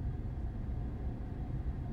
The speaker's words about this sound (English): This fucking traffic's gonna make me kill somebody, man.